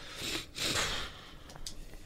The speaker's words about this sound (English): Your sniffles into the microphone.